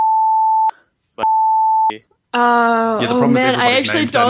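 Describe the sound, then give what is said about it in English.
Two loud, steady censor bleeps, each lasting under a second with a short pause between them, followed by someone speaking. “Beep this, but what was the person's name?”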